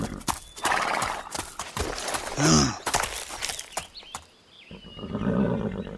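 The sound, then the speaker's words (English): A horse whinnies loudly once, a short shrill neigh, amid a steady run of clattering hoofbeats on a hard surface; a faint higher squeal follows near the end. “No, don't get off the horse.”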